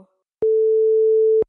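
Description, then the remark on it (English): A dropped Skype call busy signal: one steady, mid-pitched electronic tone lasting about a second, switching on and off abruptly with small clicks, heard alone with no talking. “Uh-oh, have I lost you again?”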